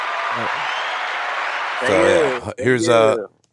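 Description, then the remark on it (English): A short round of applause, a dense hiss of clapping that lasts under two seconds, then fades as a person starts talking over the tail end. “Here's a round of applause for everybody.”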